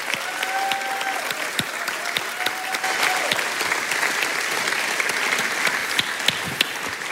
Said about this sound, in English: I think they clapped a little too much for you.